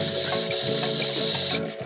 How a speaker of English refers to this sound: If you listen closely, you will hear the sound of his dick letting liquid go deep into the bowl.